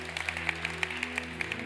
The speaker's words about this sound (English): You can go ahead and clap for that.